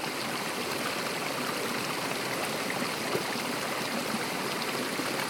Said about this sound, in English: You are surrounded by green moss covering the giant boulders and rocks, and vegetation that is all tangled together reaching for the sunlight. The ambient temperature drops just a few degrees from the rushing water, and all you hear is